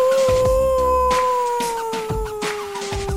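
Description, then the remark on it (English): A voice imitates a coyote howl, holding one long, steady wail that slowly sinks in pitch for a few seconds, fairly loud, with a few brief noisy bursts behind it. “I'm almost thinking, how does a coyote cry, though? Anybody know how a coyote would cry?”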